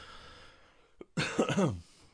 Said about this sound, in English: Nice cough that I'm not going to edit out of this podcast because I don't have time.